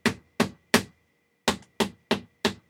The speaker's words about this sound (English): Who is there? Who is knocking at my door?